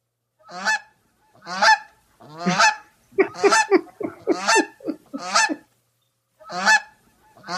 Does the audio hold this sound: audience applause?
no